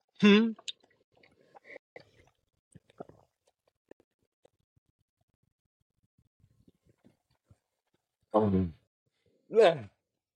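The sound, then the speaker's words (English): Someone drinking water, with small wet clicks and gulping swallows, opening and ending with short voiced exhales after the sips. “If you're listening to this, that's just water.”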